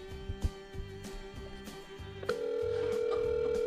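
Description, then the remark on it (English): An outgoing phone call's electronic tone as a call is placed to Rob Fee: a quiet steady hum gives way partway through to a louder, unbroken mid-pitched ring that holds to the end. No one speaks. “So I'm calling Rob Fee now.”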